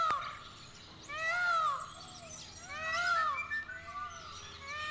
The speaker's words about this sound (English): Among the calls of the many birds at the San Diego Zoo, there's the near-human cry of the peacock.